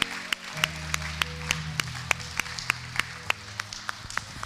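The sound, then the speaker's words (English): An audience applauds the Lord together after a prayer, a dense wash of clapping with sharp, steady rhythmic claps standing out, sustained, while a low held tone hums underneath. “Let's give the Lord a round of applause one more time.”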